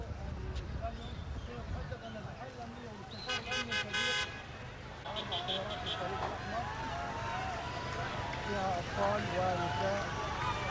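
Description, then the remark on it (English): Car horns honk in short repeated bursts amid a dense crowd of voices and cheering, with engine rumble underneath as a Red Cross convoy of vehicles moves through the Rafah crossing between Gaza and Egypt. “You can hear cheers and horns honking.”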